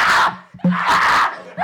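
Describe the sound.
A voice lets out a loud, shrill, breathy scream in three bursts, mimicking a whistling tea kettle, with a sharp squeal piercing through the middle of it.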